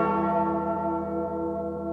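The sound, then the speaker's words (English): A single large cracked bell rings out loudly, its rich, humming overtones sustaining and slowly fading over about two seconds, with no voices present. “They go together like the Liberty Bell and its crack.”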